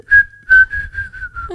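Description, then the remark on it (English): Someone whistles a quick circus tune, a string of short, bright notes in a brisk, bouncy rhythm, with no talking. “I start whistling that at work when shit is going nuts.”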